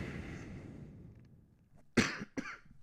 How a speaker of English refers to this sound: Excuse me for coughing again.